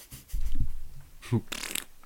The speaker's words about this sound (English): And I forgot to clap my mint sprig. Yeah, me too. Mm-hmm. Let me clap it. I'm gonna clap a wet mint sprig. Ready?